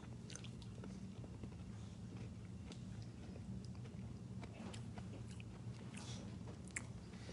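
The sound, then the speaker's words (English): Chewing sounds of a person eating a fizzy lemon lime candy during a taste test: soft squishy bites and mouth noises repeating steadily over a low background hum, with no talking. “Yeah, really sweet, easy to chew.”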